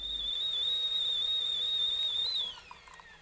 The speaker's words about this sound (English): Put the kettle on.